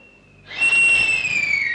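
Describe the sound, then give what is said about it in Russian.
A man's loud, piercing whistle held steadily for over a second, starting abruptly after a faint thin tone and ending slightly lower in pitch, with no talking. “На свист мужика собираются мастеровые с топорами в руках.”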